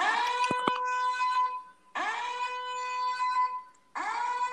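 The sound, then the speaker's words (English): A loud, harmonically rich alarm sound effect, used to announce a bet, blares in three long bursts, each starting abruptly and ringing steadily before cutting off, with a couple of sharp clicks near the start of the first burst. “Let me sign the pod bet alarm.”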